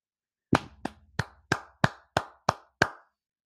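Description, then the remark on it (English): One person claps their hands eight times in a steady, fairly quick rhythm to congratulate Trey Lyles on a good game, each sharp clap loud and crisp with a short decay, with no talking. “You got a clap from me, man.”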